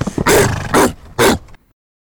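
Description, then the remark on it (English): Hunting hounds bark and yip in three loud, closely spaced bursts, with a rough background of baying underneath before everything cuts to silence. “The barking and yowling and yipping of hounds, hunting dogs, right?”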